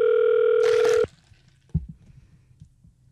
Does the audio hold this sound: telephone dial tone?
yes